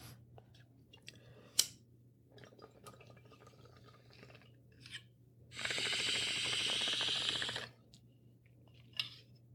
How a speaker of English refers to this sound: That was the first thing I just did, was take a hit of the bong.